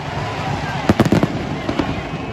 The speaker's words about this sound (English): Cue the fireworks.